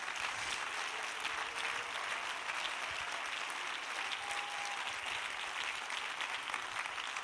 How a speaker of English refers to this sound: Give him another hand clap of praise, would you?